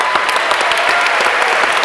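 A crowd applauds, with many hands clapping in a dense, steady patter that stays loud and even throughout, with no voices rising above it.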